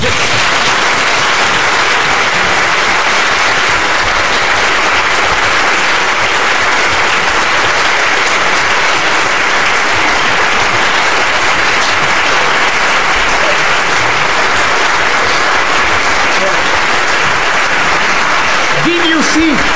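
Sustained, loud audience applause at the end of a talk, with dense, steady clapping filling the whole stretch, no pauses, and a brief voice emerging right at the end.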